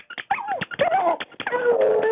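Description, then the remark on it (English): A dog named Eddie, coaxed to howl to predict a Cowboys win over the Eagles in the Super Bowl, howls in drawn-out, wavering cries that rise and fall in pitch, preceded by a few short yelping notes, with no one talking. “Oh, Eddie's howling!”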